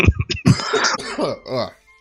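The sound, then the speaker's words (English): A few short, harsh coughs from someone who is sick burst out at the start, followed by someone talking in a strained, hoarse voice. “Thankfully, I have a mute button on my headset, so you won't hear me cough much.”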